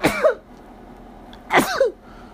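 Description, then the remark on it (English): Two sharp sneezes about a second and a half apart, each a sudden breathy burst with a brief voiced tail, separated by quiet. “Ooh, I'm finna sneeze in 3, 2.”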